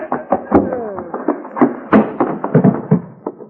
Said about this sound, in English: Hoppy, you knocked him plumb through the screen door.